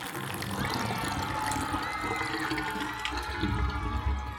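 Lucky Duck Lake, drained by Mighty Mila and Hal the Hamster, drains away in a steady, loud rush with gurgling and swirling, continuous for a few seconds with no voices.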